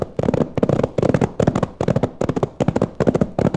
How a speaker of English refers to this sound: Those shots came from just ahead of us.